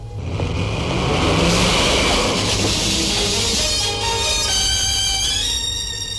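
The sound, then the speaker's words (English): A car engine roars loudly, revving hard as the car accelerates recklessly in an attempt to run a man down, its whining pitch climbing steadily over several seconds with no voices present. “And a car attempts to run him down, kind of very, very reckless.”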